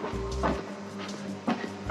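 Heavy stomping footsteps thud on the floor upstairs, a couple of dull, booming impacts over a steady low rumble, with no voices.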